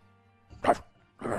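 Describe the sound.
A voice mimics a dog's bark with a single sharp, loud woof, followed shortly by a breathy rising burst, with no other talking.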